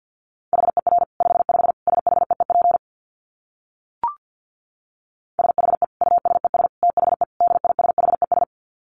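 Morse code sent at a fast 50 words per minute: a steady mid-pitched tone keyed in rapid dots and dashes, two bursts of sending split by a pause with a single soft click.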